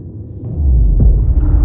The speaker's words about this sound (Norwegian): Mens Kursk er under vann, går en eksplosjon av ombord. Sannsynligvis en av torpedoene som har eksplodert ved et uheld.